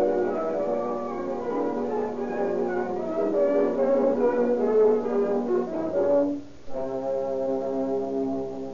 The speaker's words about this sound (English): Here comes the ambulance now.